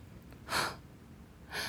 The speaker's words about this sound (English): Oh, I gasped and the tears fell again.